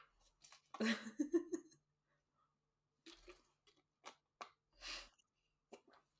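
Wet sipping and swallowing sounds of someone drinking water, a louder slurp first, then several short gulps and mouth noises separated by brief pauses, with no talking.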